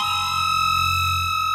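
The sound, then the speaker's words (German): A high, shrill shriek of an echidna held steady for about a second and a half, with a buzzy, distorted, electronic edge and a low hum beneath it. No one speaks. “Es war ein höher, spitziger Schrei, gewesen, wie man ihn auf der grossen gelben Wiese am Ende der Welt noch nie gehört hat.”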